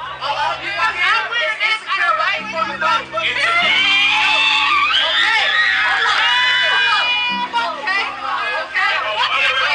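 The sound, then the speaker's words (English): A loud crowd of twerkers screams and shrieks continuously at a preacher, high excited voices overlapping, with a steady low hum underneath and bursts of chatter and laughter mixed in. “Okay, guys, all the screaming that you hear, that is the twerkers.”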